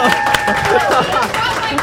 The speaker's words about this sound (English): This is a rowdy crowd. Yeah. I don't know if I'm into this. We've got hecklers.